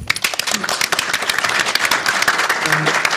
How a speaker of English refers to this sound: Next on our line, and you can keep that applause going